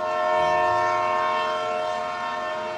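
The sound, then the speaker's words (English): A train sounds a long, steady horn, loud, held for the whole moment over a low mechanical rumble, with no one talking. “2 hours later, the president stands on a train platform in Washington, D.C., trying to look casual.”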